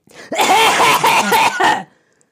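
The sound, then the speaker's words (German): A burst of loud, forceful, deliberate coughing, several rough coughs running together over about a second and a half before stopping abruptly, made to test a microphone cough-mute button while the speakers sit in the same room. “Mach mal Abhustaste und ich huste so laut, dass man mich trotzdem noch hört.”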